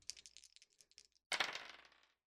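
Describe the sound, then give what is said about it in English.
A quick flurry of light plastic clicks as a swapped-in set of dice is shaken, then a sharper clatter as they tumble and skitter across a hard table before settling, fairly quiet. “Switching out the dice. These dice are no good.”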